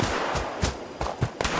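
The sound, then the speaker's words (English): Irregular gunfire over by the Wayward: about six sharp, loud shots crack out over a steady background hiss, unevenly spaced with a couple coming in quick succession. No one speaks. “It's gunfire.”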